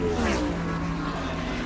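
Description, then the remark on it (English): A race car driven by Rhonda Stark, leading the race, screams past the announcer's booth, its loud high-pitched engine whine dropping in pitch as it speeds by, with a roaring rush of noise that lingers afterward. “And here she comes by our announcer's booth. Look at her go”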